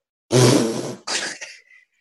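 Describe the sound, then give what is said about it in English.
A voice imitates a man loudly blowing his nose into the inside of his shirt: one long, wet, honking blast, then a shorter second snort that trails off, with no talking. “And he'd blow his nose on the inside of his fucking shirt, right?”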